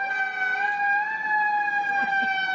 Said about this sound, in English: So this is a fire truck you're about to play. It's a fire truck.